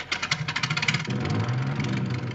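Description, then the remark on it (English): A World War I Sopwith Camel biplane engine starting in the Peanuts TV special It's the Great Pumpkin, Charlie Brown: about a second of rapid, choppy sputtering bursts, then it catches and settles into a steady, loud, low droning roar with no voices. “Here's the World War I flying ace climbing into the cockpit of his Sopwith Camel.”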